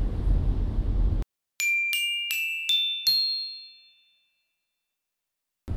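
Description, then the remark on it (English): A burst of low rumbling noise cuts to silence, then five bright bell chimes ring in quick succession, stepping upward in pitch and leaving a shimmering tail that fades out. “We're going to go look at some pretty old Christmas lights and probably listen to some tunes, snap a couple photos, and we will be right back to you after the jingle bells.”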